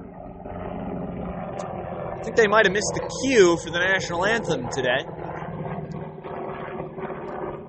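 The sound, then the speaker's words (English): A Black Hawk helicopter flies over a baseball game, its steady, low rumbling drone running through the whole stretch at a constant loudness beneath a man's voice talking over it. “Looks like we're getting a Black Hawk helicopter flyover.”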